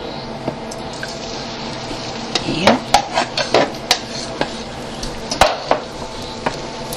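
Beaten eggs for scrambled eggs, seasoned with onion powder and thyme, are poured into a hot pan on the stove with a soft sizzle, followed by a run of light clicks and scrapes as a utensil keeps stirring them, moderately loud.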